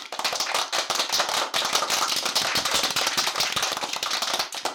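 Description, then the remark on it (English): A steady wash of applause from many hands, dense crackling claps at an even, fairly loud level for the whole stretch, with no voices. “Can we get some more applause, Nate, please?”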